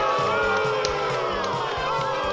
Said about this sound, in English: Round of applause.